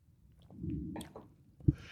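A quiet sip of Zinfandel wine, with soft wet slurping and swallowing sounds, followed by a single sharp knock and a faint hiss. No one speaks.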